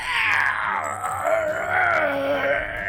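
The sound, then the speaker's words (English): A voice lets out a long, strained, anguished scream-groan, sustained loudly for about three seconds with a wavering pitch, alone with no talking: a professor screaming up at the ceiling as claws are dragged along his sides. “Professor Urtric screams up at the ceiling.”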